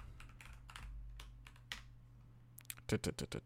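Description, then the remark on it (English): Irregular keystrokes tapping on a computer keyboard, typed one-handed while holding a mug, sparse and unhurried at first, then a quicker, louder cluster of clicks near the end, over a faint steady low hum. “So I gotta like type in all of their, and I'm typing one-handed because I'm holding a mug for some weird reason.”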